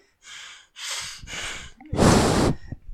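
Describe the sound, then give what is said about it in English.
Heavy breathing right up against the microphone: a few breathy puffs in quick succession, then one much louder, rougher exhale that blasts the mic. No talking. “No, because you don't always breathe into the microphone like you're doing today.”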